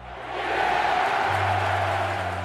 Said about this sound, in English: But wait, the umpire's finger remains down like an obstinate toddler refusing bedtime. And the crowd goes wild. They're storming the field with more ferocity than my ex-wife during alimony negotiations.